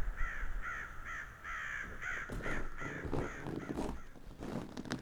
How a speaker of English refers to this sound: I woke up this morning to the sound of a lot of crows cawing.